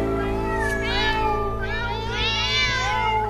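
A cat meows twice, close and clear: a short rising mew followed by a longer, drawn-out wavering meow, over a steady low background hum.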